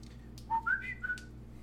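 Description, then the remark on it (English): A short, soft whistle of three or four quick notes stepping upward, lasting under a second, heard on its own against a quiet background hum. “a little whistle.”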